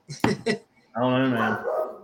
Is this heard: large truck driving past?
no